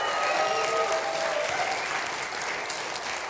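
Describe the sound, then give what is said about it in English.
An audience claps steadily for a few seconds in response to facts the speaker tells, a dense, even wash of many hands that eases off slightly toward the end, with faint voices and cheers mixed in early on. “I'm just going to keep telling you facts and getting applause.”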